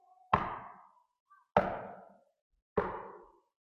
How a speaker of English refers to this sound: Trying to keep the house tidy and have dinner ready by the time Joseph comes back from his carpentry shop, when suddenly she hears a knock at the door.